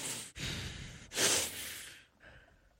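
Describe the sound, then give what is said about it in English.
Heavy, noisy breathing right up against the microphone: a few loud, rushing inhales and exhales in close succession, the strongest gust in the middle, with no talking. “So he's a heavy breather, huh?”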